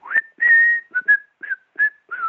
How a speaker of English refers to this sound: I'm standing somewhere near, and I'm just happy. Geez, it's a beautiful day. I'm going to be in this John Ford Western, and I'm kind of whistling.